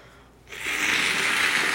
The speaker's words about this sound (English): I gotta get a tissue. You're on top of the tissue box. My nose be running. Hold on. Let me blow my nose real quick.